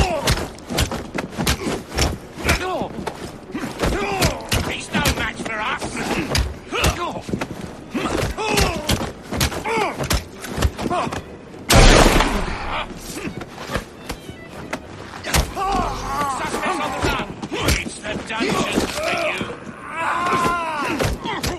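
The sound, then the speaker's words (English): A rapid, chaotic barrage of punches and gunshots from an Assassin's Creed game, played as the character Jacob, with sharp thuds and bangs piling on each other, a loud burst midway, and voices shouting taunts and crying out throughout. “Just a lot of punching and shooting and overconfident taunts and the screams of the dying.”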